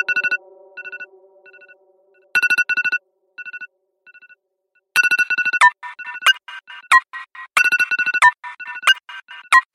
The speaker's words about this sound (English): I had to like stop everything and I just fell out because that is the most horrifying sound of all time, which is your alarm.